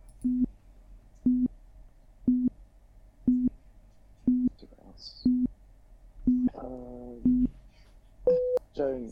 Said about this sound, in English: You got it just after the buzzer, because it started buzzing as you were about to say Joe.